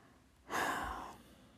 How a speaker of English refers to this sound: Lots of breathing.